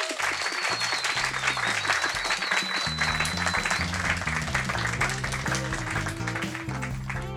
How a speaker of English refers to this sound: Okay, round of applause.